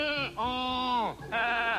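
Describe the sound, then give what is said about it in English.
A human voice imitates a goat in the manner of the Saturday Night Live Goat Boy routine, letting out three loud, wavering bleats in quick succession, with no other talking. “Hi, I'm Goat Boy”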